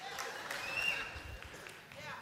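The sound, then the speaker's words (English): Faint, scattered audience clapping with a few sharper individual claps over a soft hiss, thinning out and tapering off rather than building. “The claps are waning.”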